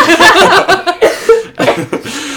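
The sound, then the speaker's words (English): A person coughs several times in quick, uneven bursts, loud, with brief pauses between the harsh, throaty fits and no talking over them. “You can cough.”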